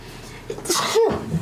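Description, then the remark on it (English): A single sharp sneeze, a quick inhaled buildup bursting into a loud, breathy explosive blast that trails off, with no talking. “Bless you.”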